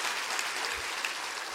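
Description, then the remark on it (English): A crowd claps steadily together to bless the Lord, a dense wash of many hands applauding at an even level throughout, with no voices heard. “Clap your hands real big and say, it's time to bless the Lord in my life.”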